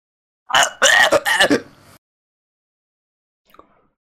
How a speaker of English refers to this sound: I just tried putting my mechanical pencil on how far up my throat I could put my mechanical pencil before my gag reflex hit. Oh, I'm gonna try it again. That sounds interesting. I'm gonna do it with my pen.